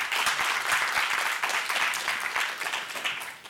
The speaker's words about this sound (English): Great. Well, thank you so much. Let's give a round of applause to the panelists.